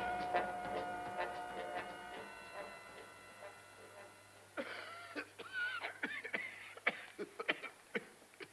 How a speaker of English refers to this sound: a nasty cough